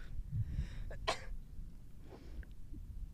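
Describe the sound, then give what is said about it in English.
A single sharp sneeze, brought on by sand, bursts out, preceded by a quick inhale and followed by a few softer breathy sounds. “I'm going to sneeze.”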